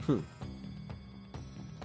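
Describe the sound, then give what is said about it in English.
A single short, loud burp at the start from a person who had Cajun fries for dinner, followed by a steady, faint ticking like a clock in the background. “Oh, excuse me. Sorry. I had Cajun fries for dinner.”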